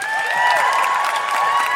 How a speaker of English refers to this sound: Thank you. Huge round of applause for the Gotto gang.